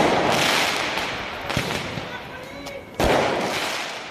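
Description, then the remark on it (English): Fireworks thrown during street riots in France explode with sharp, loud bangs, two standing out above a dense, roaring street din, with indistinct shouting voices and crackling in the background. “Fireworks thrown, police buildings and schools trashed, cars burned.”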